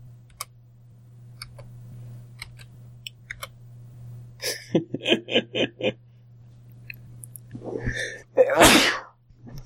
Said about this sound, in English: Sorry, sneeze move.